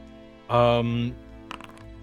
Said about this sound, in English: Stop rolling dice! Why? I just like rolling dice sometimes. Just quit it.